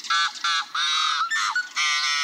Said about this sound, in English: In the Midwest, at Rice Lake State Park in Minnesota, a yellow-headed blackbird offers its gruff repertoire of growls and toots.